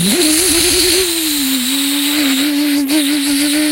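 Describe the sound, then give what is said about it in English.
A large bus engine turns over and catches, its pitch climbing and wavering briefly before settling into a loud, steady droning rumble, with no voices. “They fired it up.”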